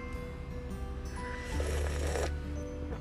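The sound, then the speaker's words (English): A loud, airy slurp of coffee, a drawn-out rushing suck lasting under a second, with a low rumble underneath and softer noisy sipping before and after. No one speaks. “Every time I slurp, I think of my little sister.”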